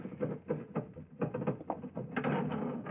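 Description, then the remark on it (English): A sticking elevator door being forced open, with a run of uneven knocks and rattles that build into a heavier, steady scraping grind toward the end. No one speaks. “I must speak to him again about this elevator door. Sticks something terrible.”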